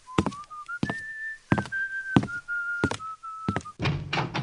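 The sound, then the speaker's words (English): Solid thumping knocks on a door, arriving in uneven pairs and clusters, while a steady whistled tune carries on underneath. No one speaks. “Someone's at the door.”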